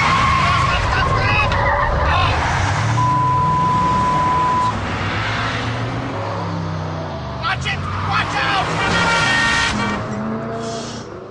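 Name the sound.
car speeding and skidding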